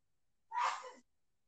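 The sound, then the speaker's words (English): A single sharp sneeze, sudden and breathy, lasting about half a second, with silence on either side and no talking. “Bless you.”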